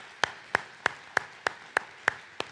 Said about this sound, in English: somebody, can you just give God a hand clap of praise in this house? Amen.